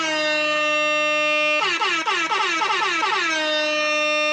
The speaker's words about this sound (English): Air horn update. Air. How is it an update? It's always the same. Look, I want people to know the deal with the air horn is that the air horn represents whenever something that could potentially end up being turned gets mentioned.